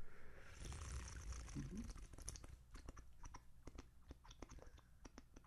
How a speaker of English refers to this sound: So it's chocolate donut coffee. Oh, boy, it smells good. I have trouble with flavors in coffee, though. And I think... You mind if I take a sip of it? No, go ahead. Okay, yeah. Here we go.